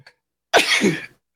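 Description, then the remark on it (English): A single loud sneeze bursts out after a brief quiet pause, sharp and explosive at first, then trailing off into a breathy tail, with no talking. “That half will make you sneeze if it's any good.”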